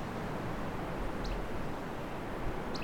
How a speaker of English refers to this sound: And something else I don't recognize. Something that's a bit more of a whip call. I think that's a flycatcher, maybe.